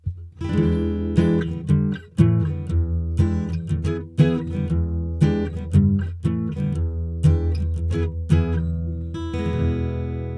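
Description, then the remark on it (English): Guitar chords strummed in a steady, moderately loud rhythm, each strum ringing into the next as a simple tune plays with no voices. “Then, Daisy the Calico Cat strummed a tune on her guitar.”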